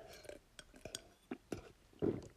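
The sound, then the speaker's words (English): A Barocca effervescent vitamin tablet fizzing in a glass of water: scattered sharp clinks and crackling pops over a soft hiss, ending with a brief louder burst of bubbling. “oh, it's the sound of a Barocca.”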